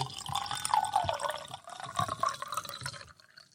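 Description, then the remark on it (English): A sound effect of liquid pouring steadily into a glass for about three seconds, a bubbling, gurgling stream with a rising tone as the glass fills, then tapering off to quiet. “You know, the pour is actually a sound bite, but that pour actually doing it was off”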